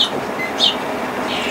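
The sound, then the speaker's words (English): Short, high bird chirps sound a few times at irregular intervals over a steady, hissing background noise. They are recorded local bird songs played back at a wildlife rescue to teach hand-reared chicks their species' songs. No one speaks. “And so we actually teach them their songs through local bird songs that we record.”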